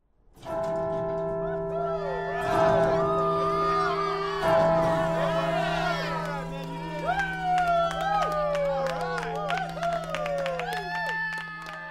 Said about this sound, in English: You think, what was that? That bell on campus? Why did it just ring 3 times, and why are people cheering?